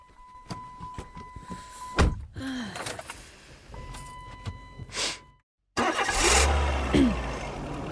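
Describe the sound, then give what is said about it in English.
A car engine starts up and runs with a loud rumble, after a series of clicks, thunks and a brief pause of silence. “Well, actually, it's my car.”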